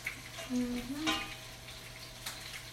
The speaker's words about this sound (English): Mm-hmm. Yeah, it's starting to boil.